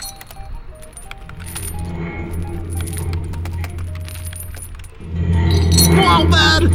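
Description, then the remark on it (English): Tire chains bought for a truck rattle and clink in a steady metallic jangle over a low, constant rumble, growing louder and busier near the end. “But where did you get those heckin' chains, bud?”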